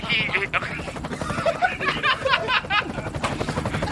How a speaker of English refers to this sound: You know, I've always loved the sound of a helicopter. Can you hear it as well when you're in it?